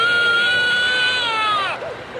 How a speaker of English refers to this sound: I don't like this sound. If those cries sound disturbingly real, it's because they're recordings of actual babies crying.